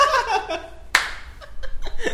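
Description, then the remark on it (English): A single sharp hand clap rings out midway, with soft laughter and chuckling before it and light voices trailing afterward. “Oh, I just did a clap again.”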